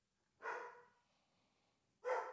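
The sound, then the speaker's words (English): Two sharp dog barks, one near the start and another about a second and a half later, fairly loud, with quiet background between them and no talking. “Damn dogs.”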